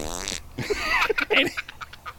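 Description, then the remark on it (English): A loud comic fart noise: a short buzzy blat, then a run of squeaky, sputtering bursts that trail off over about two seconds. “And they went, and, you know, they would hear stuff, and they replaced it with farts.”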